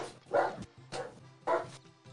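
A dog barks three times in a steady rhythm, each bark short and fairly loud, with a faint low hum running underneath and no talking.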